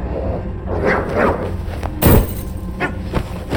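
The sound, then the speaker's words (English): A dog snarls and barks while standing in front of a television antenna in a den. When it lunges, a sharp thud sounds as it is hit away with a chair, and short, pained yelps follow over a rough background rumble. “stood growling in front of it. When he lunged at me, I hit him away with the chair.”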